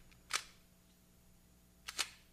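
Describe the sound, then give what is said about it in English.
A camera shutter fires twice at a shutter speed of 15 while a hot-shoe flash is tested, the flash firing on the closing of the curtain: one crisp mechanical snap, then about a second and a half later a quicker double clack, with quiet room tone between and no voices. “It shoots the flash on the closing of the curtain.”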